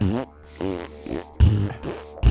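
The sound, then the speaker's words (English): A loud run of about four sputtering fart noises in quick succession, made while attempting 'circular farting', each a buzzy, rasping burst with short gaps between, with no talking over them. “trying to do circular farting. It's working.”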